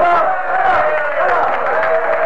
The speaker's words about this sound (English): The cheers had broke out and taken up by those waiting outside Leicester Castle. Neither the judge nor the clerk of the court could make himself heard.